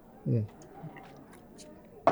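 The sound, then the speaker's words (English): Someone takes a quiet sip of whisky: a soft, low gulp, then faint wet mouth clicks in near silence before a sharp sound at the very end. “Let me take another sip.”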